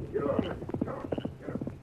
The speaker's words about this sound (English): There he goes, on one of Ben's horses.